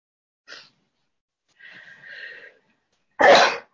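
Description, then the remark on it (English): A single loud sneeze: a brief catch of breath and a drawn-out wavering inhale, then a sharp explosive burst near the end. No talking. “God bless you.”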